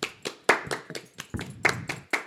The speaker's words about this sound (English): Here, let's just clap.